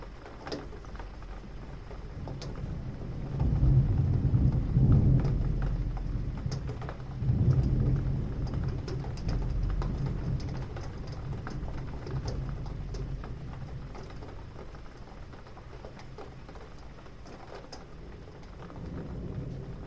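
Steady rain hisses and patters throughout, with two deep rolls of thunder rumbling low around the four- and seven-second marks before fading back into the downpour. No voices.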